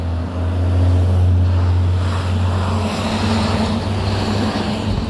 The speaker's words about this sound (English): 1 second while the school bus go by.